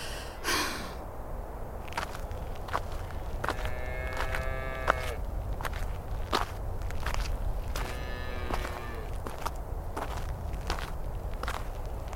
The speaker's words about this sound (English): I slowly made my way back to the house. Each step was painful.